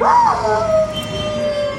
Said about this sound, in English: Ooh, a wolf. Nope, it's a dog again. While all dogs can howl, not all do. Some breeds, like hounds, are more likely to howl at high-pitched noises.